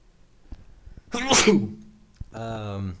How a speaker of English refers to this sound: I need to sneeze.